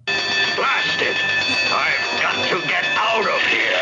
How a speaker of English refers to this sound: Someone has like a tiny little hammer and a bell, and they're just whacking it as quickly as they can.